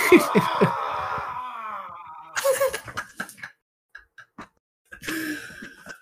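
Strained, wailing screams from across a room come in three bursts separated by short pauses. They are moderately loud and sound raw and drawn out, almost groaning.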